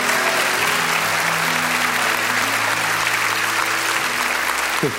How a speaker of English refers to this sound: Just come on, clap your hands, all ye people. Shout out to God with a voice of triumph. Come on, he set us free.